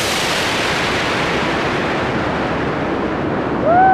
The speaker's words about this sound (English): Activate main engine hydrogen burn-off system. 10, 9, 8, 7. Main engine start. Main engines are activated. 4, 3, 2, 1, launch.